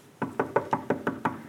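Seven steady, evenly spaced knocks on a wooden door, clear, with no voices or other sounds around them.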